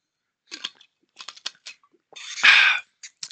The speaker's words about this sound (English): Yeah, so anyway, another drink of water. Apologies, real quick.